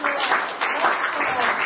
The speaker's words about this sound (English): Well, let's give a clap to the Lord today for His goodness.